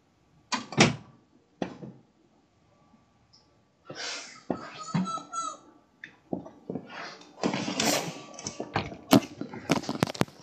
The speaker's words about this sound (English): I'll shut this door 1 second.